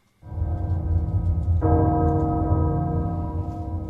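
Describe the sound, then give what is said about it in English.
A deep, heavy castle bell tolls twice, heralding danger, the second strike landing about a second after the first. Both ring out loud, their low resonant hum sustaining without any voices. “The castle bell heralds danger.”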